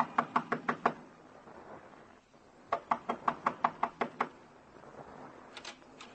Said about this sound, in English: Knock on the door.